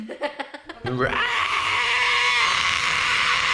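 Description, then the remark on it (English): After a few short voiced bursts, a voice lets out a long, harsh, high-pitched monster screech that holds steady and loud for nearly three seconds, imitating the creature's cry as it tilts its head up and screams. “It tilts its head up and screams.”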